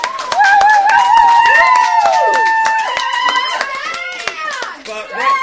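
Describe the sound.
A small group claps in a brisk, irregular round of applause lasting several seconds, with voices calling out and whooping over the steady patter of hands.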